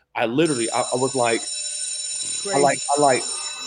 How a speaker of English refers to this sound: I left my body and I was like, you hear the bells in the back? Yeah. I just made 10 G's right now and I'm talking to you. And that's real.